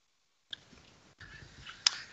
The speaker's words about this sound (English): Excuse me while I sip some water.